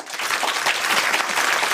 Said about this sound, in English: And a round of applause